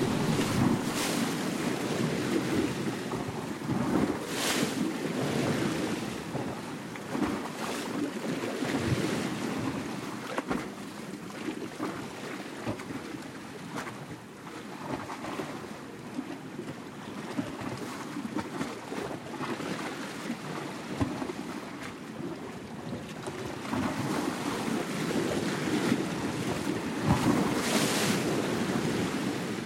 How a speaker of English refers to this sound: We leave you this week on the shores of the Adriatic Sea. Eric Lacasa composed this piece from recordings he made of waves hitting the shoreline and swirling in rocks along the coast near Rovinj, Croatia.